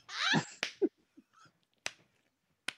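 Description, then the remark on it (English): A few sharp, fleshy slaps of a man's penis against his leg, spaced irregularly, fairly loud, following a brief breathy noise at the start. “I was slapping my dick on my leg.”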